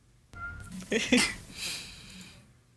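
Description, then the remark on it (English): A female domestic cat gives a single drawn-out meow, rising and then trailing off over a couple of seconds, moderately loud. “Well, she only meowed once, so I guess she thinks one.”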